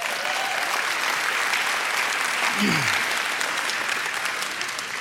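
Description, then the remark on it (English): A church audience claps and cheers in a steady, dense burst of applause that fills the whole clip at a consistent loud level, with scattered voices mixed into the noisy clatter, cheering the plan to add two worship services in 2024. “And yeah, you can cheer for that.”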